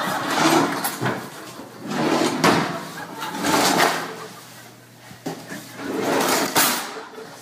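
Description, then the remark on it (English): A child yanks and rattles drawers that are not real drawers again and again, several rough scraping bursts in quick succession, fairly loud, with no one talking. “Those aren't real drawers, buddy.”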